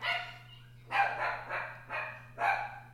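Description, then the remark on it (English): A dog barks repeatedly because someone is at the door, about five sharp barks in quick succession at a steady pace, over a constant low electrical hum. “Someone is at my door, and my dog is going crazy.”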